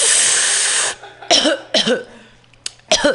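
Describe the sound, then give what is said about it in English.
A long breathy exhale gives way to three harsh coughs, spaced unevenly with short pauses between them; no one is talking. “I don't cough as much now that I have a vaporizer.”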